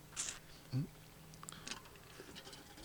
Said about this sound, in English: Okay. I was just getting me a sip of water.